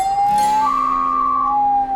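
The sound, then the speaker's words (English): A hand-carved wooden bird call imitating a loon: a loud, steady, mid-pitched whistled wail held for about two seconds, with a second higher tone briefly layered over it in the middle. “Sounds just like a real loon.”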